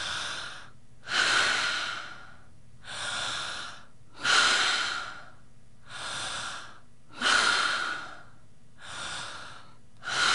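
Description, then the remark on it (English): Slow, deep breaths in a guided set of ten breaths, alternating steady inhales and longer, stronger exhales in an even, paced rhythm, about four full cycles with no talking. “And let's do these 10 breaths together.”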